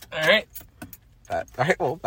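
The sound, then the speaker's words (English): Keys jangle in short bursts, followed by a car engine cranking and turning over in a few uneven surges. “gonna turn on the car now.”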